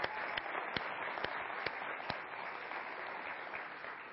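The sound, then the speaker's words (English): A crowd applauds steadily, many hands clapping in a dense, continuous wash with a few sharper individual claps standing out, moderate in volume. “Why are we clapping?”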